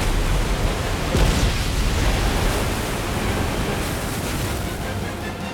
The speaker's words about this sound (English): But before she could devour him, the tidal wave wiped the entire palace off the cliff into the sea below.